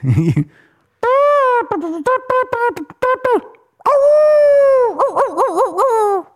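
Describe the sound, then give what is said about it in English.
A person imitating a dog howls loudly in long, wavering cries, broken up by a quick run of sharp barks and yips in the middle, then a final warbling howl. “I can do horns and dog barks.”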